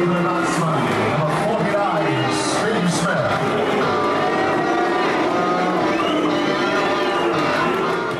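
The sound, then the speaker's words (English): A large crowd of English cricket fans at Lord's chants 'Root' in unison as Steve Smith comes in to bat, a loud, steady wall of drawn-out voices that holds strong for the whole stretch, with no one speaking over it. “Stephen Rudolph sent us an email asking, why are the English fans chanting Root when Warner and Smith walk on and off the field?”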